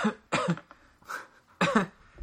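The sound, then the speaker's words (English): A person imitates a man coughing in a museum, with a few short, raspy, throaty cough bursts spaced apart, fairly loud, no talking in between. “You hear, like, a guy coughing in the background. There's just there's a looping track of one guy going...”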